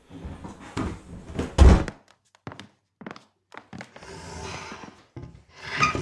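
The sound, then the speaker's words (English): A heavy wooden trunk, Batula's trunk, is dragged around in a recorded sound effect, in rough bursts, its scraping broken by a loud thump, short pauses, and a creaky squeak of wood near the end. No one speaks. “Batula's trunk gets dragged around, and I recorded some wood squeaking and scraping noises.”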